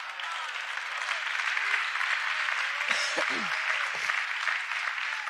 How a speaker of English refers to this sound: That deserves a clap.